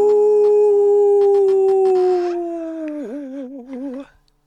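A dog lets out one long, loud howl, holding a steady pitch before sliding downward into a wavering, quavering finish, then stopping abruptly. No one speaks.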